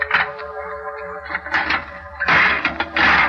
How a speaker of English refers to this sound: I opened the door.